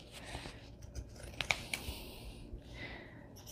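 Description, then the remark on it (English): Quiet snipping of scalloped fabric scissors slicing through cloth, a few crisp crunchy cuts clustered together over a soft rustling background, with no one talking. “It's actually a fabric scissor, so I'm using it for its intended purpose, and I'm not cutting the paper. I'm just cutting the fabric.”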